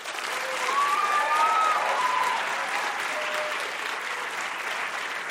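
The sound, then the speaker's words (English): Sustained audience applause welcoming debater Randall Kennedy, Harvard Law School professor, arguing against the motion that affirmative action on campus does more harm than good: a dense crackle of many hands that swells in the first second or two, then holds fairly steady for several seconds, with a few faint whistles or cheers mixed in. “First, let's please welcome Randall Kennedy.”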